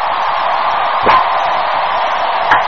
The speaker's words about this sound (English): They're cheering, man. They love Michelle Obama.